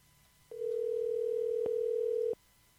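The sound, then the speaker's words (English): A single steady, mid-pitched ringback tone sounds through a phone line for about two seconds during a call to a mayor's office, with faint clicks at its start and end and quiet line hiss around it. “If there's a person answering the phone, this is incredible.”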